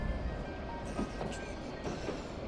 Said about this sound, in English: The junction lies ahead, so if you'll allow me just a moment. Pay no mind to our train's backwards motion, dear traveler. We are now passing through decades of the past.